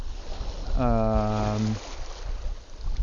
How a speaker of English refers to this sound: but if I turn around, like, with my face into the wind, you might hear some noise in the microphone, because I have the wind right over my head when facing the water, which is actually quite nice, because that will help my casting.